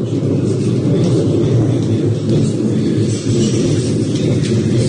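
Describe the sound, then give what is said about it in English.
A deep, continuous rumble of thunder in Youghal rolls on steadily and loudly for the whole stretch, with a faint hiss above it and no voices. “That is thunder.”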